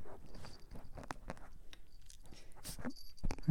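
A puppy chews on a microphone, making irregular crunchy bites and scraping, rustling contact noises that come in uneven bursts, with a louder clatter near the end. No one speaks.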